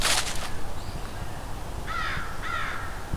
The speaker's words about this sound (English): American crow. It's about 10 crows here and an eastern Phoebe singing. And Canada geese. Some very unhappy crows here.